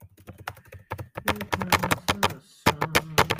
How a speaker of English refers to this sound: Dude, Do you like my loud typing?